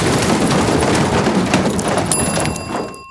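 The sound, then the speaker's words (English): A loud, sustained crash of clattering, banging metal debris as an elevator car smashes down its shaft after gremlins chewed through its cable. It ends in a few seconds of ringing metallic tones before cutting off abruptly. “Elevators make a lot of noise when they crash.”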